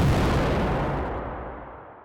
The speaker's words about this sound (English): The 2 jump from the ship as it explodes into pieces.